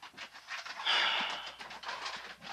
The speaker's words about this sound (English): Hear all that noise? It's not a thing of cows, it's actually my dogs.